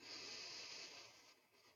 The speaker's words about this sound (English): Deep breath in and then breathing out nice and long like you're breathing out from a straw.